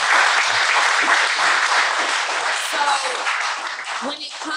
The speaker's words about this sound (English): Yeah. Congratulations. Yeah. Clap it up.